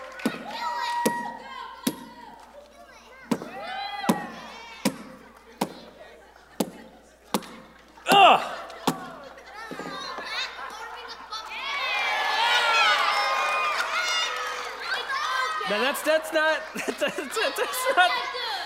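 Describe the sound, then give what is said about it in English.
A steady series of sharp thumps as something is smashed, then a group of kids breaks into loud, overlapping yelling and cheering of encouragement that swells and carries on for several seconds. “How about a little yelling?”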